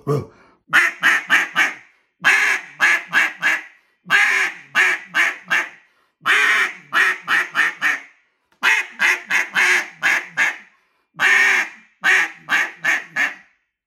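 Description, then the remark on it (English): A duck call blown to imitate a barking hen mallard: loud, raspy quacks in quick clusters of four or five, repeated about six times with short pauses between, clear with no talking. “So you hear that nice barking hen, and that's what I'm just barking.”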